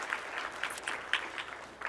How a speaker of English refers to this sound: Let's give a round of applause again to Gabe.